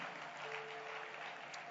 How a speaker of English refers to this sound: Give the Lord a wonderful, wonderful clap of praise.